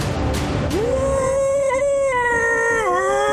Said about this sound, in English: This thing is terrifying. I mean, it's pretty scary, and it just lets out an incredible roar.